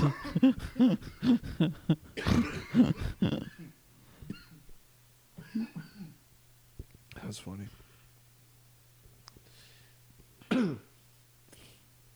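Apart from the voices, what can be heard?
coughing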